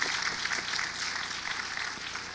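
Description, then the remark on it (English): Steady, dense clapping from a crowd, a continuous crackle of many hands at an even level throughout with no voices on top. “Come on, we got to clap for that, y'all.”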